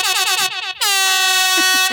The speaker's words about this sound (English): Let me play the air horn that we do when we make a pun.